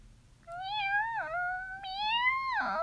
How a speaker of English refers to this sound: Meow, meow. I'm just a very homely little cat, said the kitten.